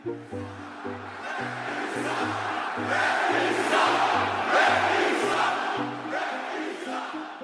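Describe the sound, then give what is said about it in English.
A huge arena crowd of some 18,000 people screams, boos and roars loudly and continuously, swelling in the middle, while a rhythmic series of low, steady notes pulses underneath. No one speaks. “Does the sound of those 18,000 people screaming at you or booing you, does it sound any different than it sounded when you started in 1991?”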